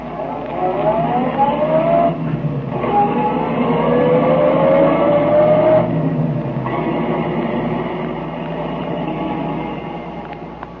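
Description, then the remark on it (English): A car engine runs steadily and loudly, its pitch climbing through several gear shifts as Tracy's car accelerates, the detective driving to Tess Trueheart's home, with no voices present. “We know, but Tracy does not, that Remo lies concealed in the back of Tracy's car while the detective drives to Tess Trueheart's home.”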